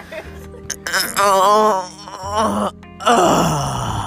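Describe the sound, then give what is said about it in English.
A drawn-out, deliberate vocal moan with a wavering, sliding pitch, followed after a brief pause by a second, rougher groan that trails downward. “That was just a moan. I wanted to just throw a moan in there.”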